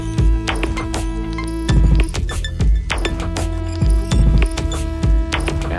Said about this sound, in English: A square or pulse wave.